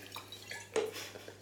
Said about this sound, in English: You're pouring too much Jägermeister for me.